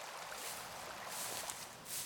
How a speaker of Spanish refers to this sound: Al girar a la izquierda, ya no escuchamos el ruido del tráfico. Ahora podemos escuchar un hermoso sonido. Es el agua de un pequeño río.